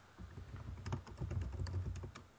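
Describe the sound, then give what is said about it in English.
Quick, irregular keyboard clatter, a run of key taps with a soft low thump under each press, continuing steadily with no voices. “So much typing.”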